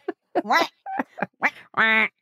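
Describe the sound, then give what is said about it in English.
A voice imitates a duck with a quick series of about five nasal, harmonic quacks, fairly loud, the last one drawn out longer than the rest. “Quack, quack.”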